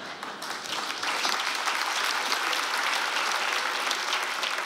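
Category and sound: crowd, audience applauding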